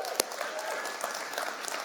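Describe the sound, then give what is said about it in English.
Steady applause from a Stone Creek church audience for the man chosen to launch a new church campus, a dense wash of many hands clapping at an even, moderate loudness, with one sharper clap standing out early on. “And I know most people clap at that because they're glad to see him out of here.”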